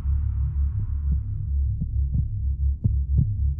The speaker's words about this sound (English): please tell me you accidentally hit the heartbeat sound effect on the soundboard again.